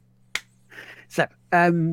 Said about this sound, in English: I just said thank you for 200. I was clapping.